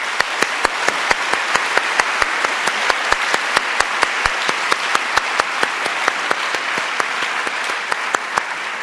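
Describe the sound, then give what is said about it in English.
An audience in a packed auditorium applauds steadily, many hands clapping at a brisk, even rhythm with sharp individual claps standing out above a dense wash of clapping, holding a fairly loud, constant level throughout. “We want to give everyone a round of applause.”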